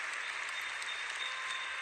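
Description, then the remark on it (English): Steady applause from an audience, a dense wash of many hands clapping at once, sustained and fairly loud throughout with no voices standing out. “Stop clapping.”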